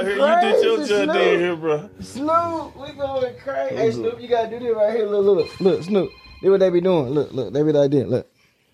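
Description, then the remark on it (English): A voice mimics a telephone ringing with repeated rising and falling warbling tones, while a faint steady electronic tone hums in the background partway through. The sound is fairly loud. “Your phone ringing.”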